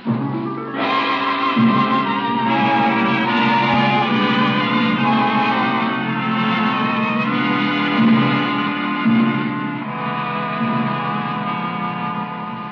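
A washing machine washing towels to get ink out of them runs with a steady, loud mechanical drone, its humming motor and faint throbbing pulse continuing without pause for the whole stretch, with no voices over it.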